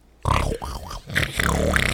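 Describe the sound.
Someone imitates a man snoring with their voice: a few rough, grunting snorts with wavering pitch and harsh, noisy texture, loud and continuous over about two seconds, with no words spoken.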